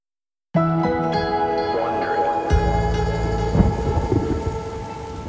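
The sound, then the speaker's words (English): Steady rain hisses and patters while a low, rumbling roll of thunder swells and lingers under it, with faint tonal music beneath, on a rainy day in Orangeburg, New York, in 2018. “It was a rainy day in Orangeburg, New York in 2018.”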